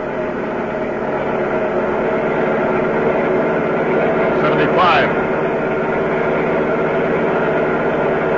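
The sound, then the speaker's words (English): A loud, steady engine roar fills the whole stretch, with a brief rising whine near the middle as the motor revs harder, a car speeding along at about 70 to 85 miles per hour. “Right now, this is the safest way I can drive.”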